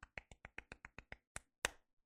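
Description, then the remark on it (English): A quick, even run of about ten crisp hand claps, then a short pause and a single louder clap to finish; no voices. “Was that the sound of me masturbating or clapping?”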